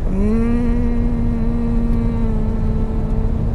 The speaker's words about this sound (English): And you're just going to vibrate that sound and feel it on your lips and focus on that sound.